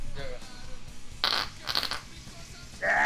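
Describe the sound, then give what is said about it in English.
A wet, sputtering fart rips out in two close, loud bursts near the middle, with a brief pause between them, while faint voices murmur in the background. “My farts sound wet, but I swear to you, they're fucking dry, dude.”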